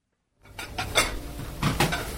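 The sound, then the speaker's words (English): Busy sounds from the small, crowded kitchen of Vezene restaurant in Athens, Greece, as cooks work just before the dinner rush: sharp metallic clatters of pots and dishes at an irregular pace over a steady low background rumble, with no clear speech. “Cooks crowd the small kitchen at Vezene restaurant.”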